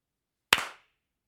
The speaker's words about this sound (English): And then we're going to come back on with a clap. So let me do a clap on my end. Or actually, both.